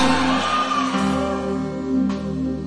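An audience shouts and cheers joyfully, a loud, sustained wash of many voices that fills the space without pause, with a steady, tonal hum underneath.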